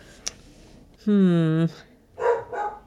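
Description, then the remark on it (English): A male dog barks: one long, drawn-out, tonal bark followed by two shorter, rougher barks in quick succession, loud against a quiet background. “What is he barking at?”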